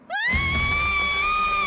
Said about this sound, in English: And she just screams as the song begins.